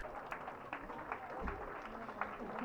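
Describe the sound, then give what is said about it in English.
Scattered, continuous clapping from a crowd of spectators at Portloo cheering on runners who have been out since just after midnight and are heading towards the finish, fairly soft and steady, with a murmur of voices mixed underneath. “So all the applause you can hear is for the plague runners who've been out since just after midnight and are now coming back through Portloo, heading towards the finish.”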